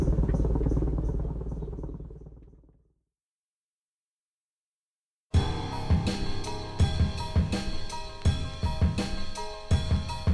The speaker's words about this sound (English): Perhaps for mining companies, and certainly for Coloradans hearing the buzz of not-so-distant helicopters.